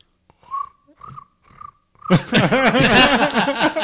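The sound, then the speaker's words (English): A voice mimics a cricket with four short, evenly spaced high chirps, followed by a sudden burst of loud, rough vocal noise that fills the rest of the moment. “That was a really good cricket noise.”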